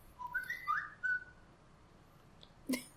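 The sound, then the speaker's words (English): A man whistles a quick series of short, rising notes, clear, followed by a pause and then a single sharp click. “He whistles at you.”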